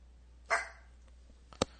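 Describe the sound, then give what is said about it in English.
A pet dog reacting to a movie being watched barks twice, about a second apart: a fuller bark first, then a short, sharp one, set against a quiet background with no one talking. “Yes, even one of my dogs is reacting to this.”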